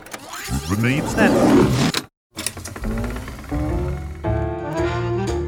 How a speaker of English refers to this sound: For that, we need to insert a rewind sound effect and head back to the 1920s.